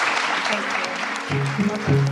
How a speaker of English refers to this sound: Thank you so much. Round of applause, please, for the panel. Thank you.